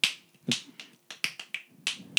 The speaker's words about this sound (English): I brought my fingers with me. To the people who don't know, my dad clicks like a legend. That was him clicking over the... Here it is.